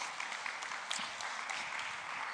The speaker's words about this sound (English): Thank you. Round of applause for our fine couple. Brilliant.